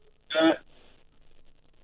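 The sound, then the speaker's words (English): A brief, bright electronic Skype call tone rings out for about a third of a second, then fades into faint, muffled background noise, with another short blip cutting in at the very end. “I'm calling you on Skype.”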